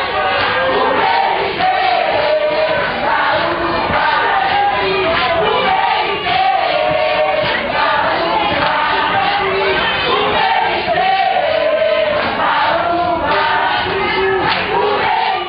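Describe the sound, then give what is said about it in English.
A large crowd of Haitian people in a tent in Port-au-Prince sings together loudly and without pause while dancing, many voices blending into a dense, steady chorus that fills the whole recording. “I remember panning my camera around, and I just see this crowd of people singing and dancing in the center of the tent.”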